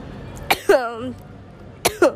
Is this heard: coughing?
yes